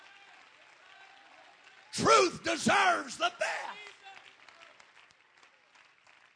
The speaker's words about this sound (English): Would you clap your hands if you know truth deserves the best?